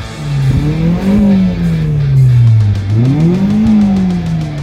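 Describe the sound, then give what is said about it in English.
The engine of a 1997 Accord sedan, on its second engine, revs up and down twice, pitch climbing then falling in smooth loud sweeps, with no voices. “hear those car sounds? Those were sent in courtesy of Trey Olmsted in his 1997 Accord sedan”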